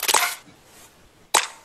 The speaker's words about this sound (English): A wet clap thingy.